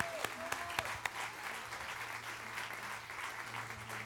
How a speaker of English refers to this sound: Put your hands together and give them a round of applause.